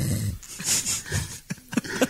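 Close, wheezy snoring: a couple of drawn-out raspy breaths followed by short snorting snuffles near the end, heard alone with no talking.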